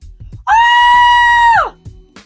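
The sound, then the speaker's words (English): A person imitates calling a dog back: a single sustained, very high-pitched squealing scream lasting about a second, loud, ending in a quick downward slide. “Or the very widely recommended, I think professionally derived practice of just screaming in a really high pitch until they think something amazing is going on, which really sounds just like this.”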